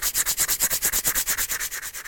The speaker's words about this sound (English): He's working on a sort of smaller version of it. Yeah, it's just sanding it down.